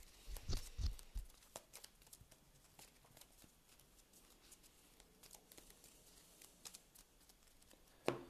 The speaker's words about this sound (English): I might exhaust it now and search the top three cards for a spell. I do not draw a spell, so I have to shuffle my deck.